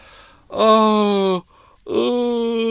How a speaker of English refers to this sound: I think it's essential to have a little yawn after Murder Mile